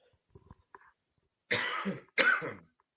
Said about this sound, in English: Oh man, it's going to be great radio for the coughing coming down the line. Sorry, everyone.